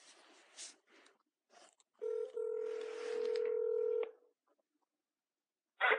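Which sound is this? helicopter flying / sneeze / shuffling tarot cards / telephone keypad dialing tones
telephone keypad dialing tones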